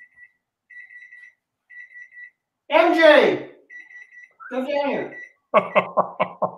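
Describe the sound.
A stove timer beeps in short, evenly spaced bursts of rapid high-pitched tones, steady, while people talk loudly over and between the beeps.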